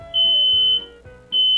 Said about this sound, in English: And finally, if your room is filled with smoke and the smoke detector sounds, here's what you should do.